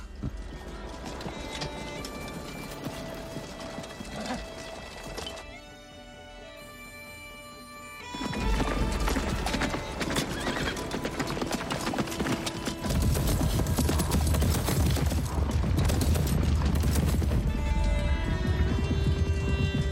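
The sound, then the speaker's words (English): A dense thunder of many galloping hooves from a cavalry charge of about 200 horses, loud and continuous, swelling in intensity partway through and building to a massed, roaring charge with no voices. “Something like 200 horses we had, but it looks like even more.”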